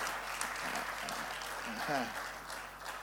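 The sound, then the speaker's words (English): A church audience applauds a first-time speaker with a steady, dense clatter of clapping lasting the whole moment, while a voice speaks briefly over the applause. “Can you help me clap for her?”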